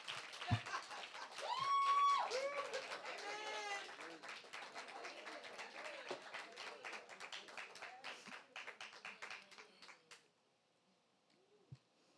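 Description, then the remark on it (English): Scattered, uneven clapping from a small crowd during a sermon runs for about ten seconds, mixed with murmuring voices and a rising whoop, then stops, leaving near quiet with a faint thump. “Well, these claps are so sparse.”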